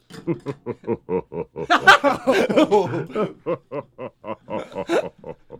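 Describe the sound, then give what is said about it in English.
A pig oinks in a rapid, steady run of short grunts, swelling into a louder, squealier burst midway before settling back into even snorts; clear, with no talking, played from a soundboard. “Oink Scoob”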